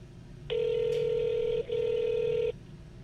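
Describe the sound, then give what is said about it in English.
A phone rings on the line while waiting for someone to answer: one steady electronic ringback tone lasting about two seconds, with a tiny blip midway, clear and alone over faint background hiss. “He ain't about to pick up the phone.”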